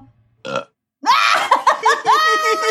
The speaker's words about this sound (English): He's burping. Didn't we talk about burping last week?